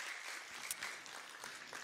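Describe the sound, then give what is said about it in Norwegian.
Steady, dense clapping from a crowd giving applause for God fills the whole moment, a continuous patter of many hands at a moderate, even level with no voices standing out. “Kan vi ta en applaus for Gud?”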